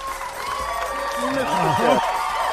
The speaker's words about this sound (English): The construction workers are coming out, and they're all applauding you because they heard you were going to be on the show. I love them. There you go. And they've all got hard hats on, too, and their lunch pails.